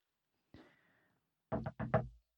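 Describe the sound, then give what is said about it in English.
A single knock with a brief ringing tail, then after a short pause a quick cluster of about four firm, fairly loud knocks on a door. “Somebody was at his non-door.”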